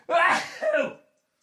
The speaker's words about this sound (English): Oh, I'm going to sneeze in a bad way.